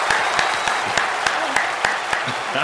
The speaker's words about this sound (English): Thunderous applause.